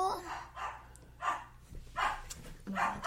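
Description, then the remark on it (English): A pet dog barks repeatedly in short, sharp bursts, roughly five or six barks spaced about half a second apart, fairly loud, with a low steady hum underneath. “That's the wonderful dog.”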